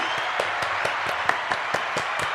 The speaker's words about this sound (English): We better give him a round of applause.